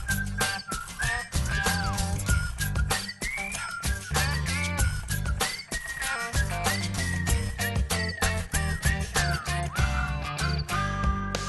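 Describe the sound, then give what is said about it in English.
Someone whistles a bright, sliding tune over a loud, steady rhythmic backing beat, the melody gliding up and down continuously for the whole stretch with no talking. “Whose side are you whistling on?”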